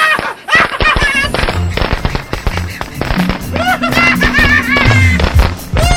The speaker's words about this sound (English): I'm lighting these fireworks.